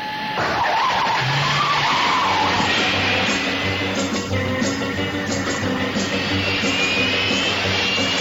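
The turbine-powered Batmobile's engine whines up loudly like a turbine, then roars and screeches as the car speeds off, the loud rushing drone carrying on steadily throughout.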